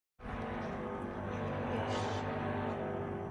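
A deep, steady horn-like drone, similar to a ship horn, sounds loudly and continuously for about three seconds with low rumbling harmonics and no talking. It was heard inland in New Hampshire.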